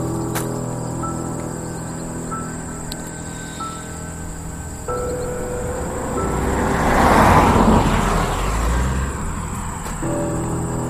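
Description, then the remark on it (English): A car drives past on a road, its hum swelling to a peak midway and then fading, over a steady chorus of crickets and insects outdoors. No one speaks. “And there's just a few cars driving by.”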